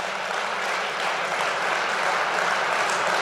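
Steady, dense audience applause: many hands clapping at once in a continuous, hissing wash of sound, fairly loud and even throughout, with no voices on top.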